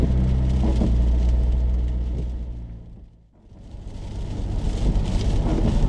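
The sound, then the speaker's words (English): A car drives along a narrow, overgrown road in County Limerick in lashing rain and wind, with a steady, low engine rumble and road noise. The sound thins out briefly about halfway through, then builds back to full strength, and no one speaks. “I'm travelling down this teeny tiny road.”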